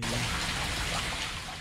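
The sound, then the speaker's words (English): Steady, continuous rush of running water with a fine splashing texture, fairly loud, holding evenly throughout with no voices. “Whoa, running water.”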